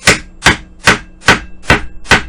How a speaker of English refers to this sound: Here, dude. Here, I got some scissors. I'm gonna bang on some wood right now.